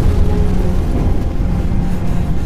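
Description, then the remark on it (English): A loud, sustained low rumbling roar of a spaceship being hit in an asteroid collision, the asteroid field pushed at it by an explosion from the surface, with a dense, churning texture and no distinct separate hits and no voices. “Alert. The asteroid valve. Collision. Hold on. Bracing.”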